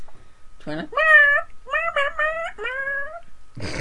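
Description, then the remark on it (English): A string of four or five loud, wavering cat-like yowls, each a drawn-out meowing cry sliding in pitch, ending with a brief burst of noise. “It sounds like a dying cat.”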